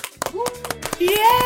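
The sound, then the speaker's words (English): Several sharp hand claps in an uneven rhythm from actress Siobhan McSweeney, clapping for herself as she is welcomed onto a show, with a voice letting out rising, drawn-out cheers over them. “Clapping myself.”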